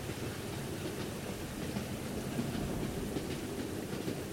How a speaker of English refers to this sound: Luckily, they heard the train.